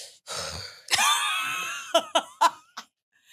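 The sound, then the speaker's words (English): Heavy, labored breathing: a long breathy exhale, then a raspy, wheezing breath, followed by four quick, sharp panting gasps. No one speaks. “Why you breathe like that, though? Why you breathing so hard?”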